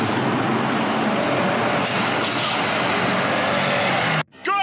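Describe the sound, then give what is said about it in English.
A large school bus rumbles loudly in steady road noise, with two short hissing bursts of air brakes midway, then the engine noise cuts out briefly near the end, as Gwyneth Paltrow, riding a scooter with her 9-year-old daughter behind her, cuts it off. “Wait, we just pulled out in front of a school bus?”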